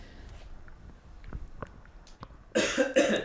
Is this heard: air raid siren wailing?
no